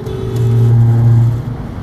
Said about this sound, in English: Y'all, the truck tried to run over us.